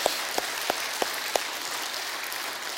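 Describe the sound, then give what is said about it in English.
A church audience claps for the worship team, a dense steady wash of applause, with a few sharp, evenly spaced louder claps standing out at the start before blending into the crowd noise. “You know, a few weeks ago, yeah, you can clap.”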